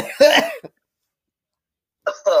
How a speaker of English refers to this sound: It's just, oh, God, I have to cough for it.